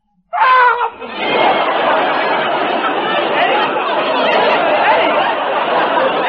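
A man lets out a sudden, loud scream that breaks abruptly out of silence, followed by several seconds of sustained, rough, noisy clamor that stays loud until the end.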